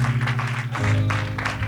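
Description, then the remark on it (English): A church audience claps and applauds in praise together in a steady wash of hand claps, layered over sustained organ or keyboard chords, with no voices speaking. “Come on, now's a good time to clap your hands.”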